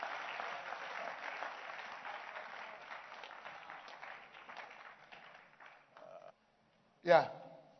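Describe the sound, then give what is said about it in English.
A crowd claps for the Lord during a sermon, steady for about six seconds, the applause gradually thinning and fading, then after a brief silence a single voice calls out loudly. “Give the Lord a wonderful clap.”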